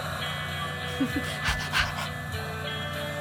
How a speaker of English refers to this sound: A lot of breathing.